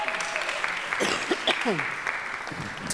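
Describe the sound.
An audience applauds with a steady, dense patter of many hands throughout, while a few voices whoop and cheer briefly over the clapping partway through.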